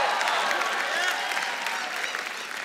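A crowd claps and cheers enthusiastically, a dense, steady wash of applause with shouting voices mixed in, sustained and fairly loud throughout without any speech over it.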